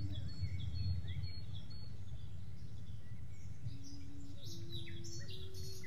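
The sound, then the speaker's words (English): Birds sing and chirp steadily in an outdoor setting, with varied short calls overlapping above a constant low rumble of ambient background noise. “You recognize the song of the birds.”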